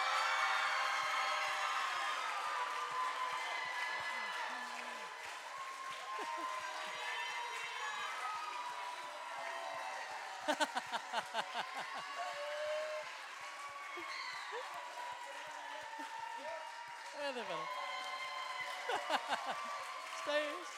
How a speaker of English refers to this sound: Can we stand up? Can we stand up? And let's give them an absolute cheering ovation, please. Come on.